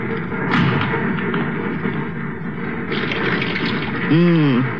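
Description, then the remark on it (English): Steady rush of warm water running from a tap, continuous for several seconds, with a brief voiced sound rising over it near the end. “Water's warm, anyway.”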